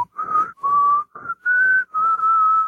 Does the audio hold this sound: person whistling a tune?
yes